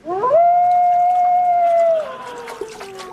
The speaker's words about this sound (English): I have already tested it on wolves with surprising results. When I put this wolf into the bath, this is what we hear.